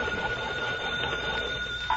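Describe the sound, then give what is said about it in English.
A hand-cranked telephone bell at a lighthouse rings continuously for a couple of seconds, a steady, rattling metallic trill at an even level, with no voices over it. “I turn this little crank here? Yes, ring it long and loud.”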